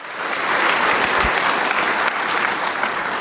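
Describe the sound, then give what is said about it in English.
An audience claps steadily for the guest speakers at the Vision event, a dense, even wash of many hands that holds at a strong level throughout, with no voices rising above it. “That applause was for you guys.”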